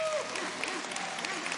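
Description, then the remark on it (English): An audience applauds the choir with a steady wash of clapping that holds at an even, fairly loud level throughout, a faint whistle-like tone cutting through at the very start. “Let's give this choir a hand clap.”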